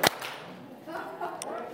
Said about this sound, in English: If you can hear me, clap once. If you can hear me, clap twice.